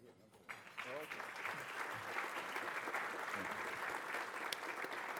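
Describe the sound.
A crowd breaks into sustained applause, many hands clapping in a dense, steady wash that swells within the first second and holds loud throughout, with faint voices underneath.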